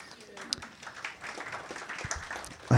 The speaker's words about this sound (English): I like that polite applause. Thank you all. Thanks, everyone. That was a heart-to-heart, followed by polite applause.